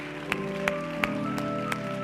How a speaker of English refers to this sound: Would you put your Bibles down today and give the Lord a hand clap with me? Let's thank the Lord for his precious word today.